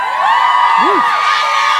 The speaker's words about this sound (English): He's not here, you don't need to clap him.